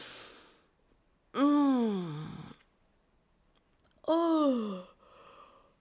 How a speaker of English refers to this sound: Sometimes I wonder what Apple Podcasts makes of all this yawning and sighing in the middle of a podcast.